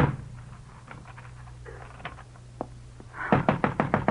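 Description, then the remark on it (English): Knocking on a locked door: a few scattered soft raps, then a quick burst of about six loud knocks at the end, over a low steady hum with no voices. “Priam, unlock this door.”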